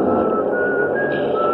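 Someone whistles a steady, wandering tune at moderate volume over a constant rumble of noise in a car full of people rushing to find seats, the melody sliding between a few held notes.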